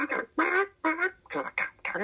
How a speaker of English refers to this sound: as you were heading down the caravan, you pass by the caravan that has a bunch of exotic birds. They're chirping, waking up in the morning.